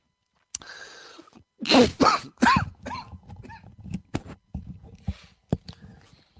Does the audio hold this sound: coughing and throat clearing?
yes